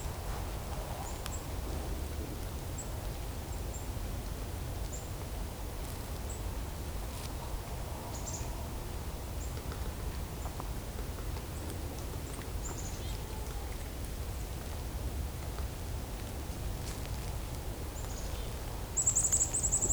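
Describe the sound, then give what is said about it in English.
A nuthatch calls with short, high notes scattered through a steady low outdoor rumble, mostly faint, with one sharper call right at the end. “Sounds like there's a nuthatch as well, too.”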